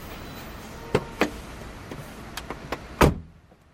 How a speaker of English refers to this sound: Here's my car. I must have circled back to it without thinking. Might as well get in, eh?